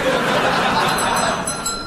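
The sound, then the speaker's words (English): A small bell in a Millet's shop is rung, with a bright, metallic ring that lingers over a steady wash of noise, with a faint murmur of voices underneath. “How much for this bell?”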